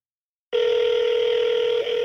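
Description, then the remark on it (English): A steady electronic telephone ringing tone on an outgoing call switches on abruptly after a brief silence and holds at an even, fairly loud pitch, heard over a phone line with no talking. “Okay, it's just ringing now.”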